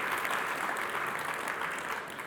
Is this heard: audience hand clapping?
yes